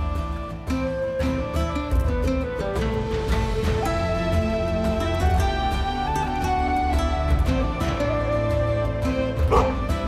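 Wolfhounds on board a ship bark repeatedly and excitedly, their sharp barks and yips overlapping above a steady, sustained musical backdrop that fills the whole clip.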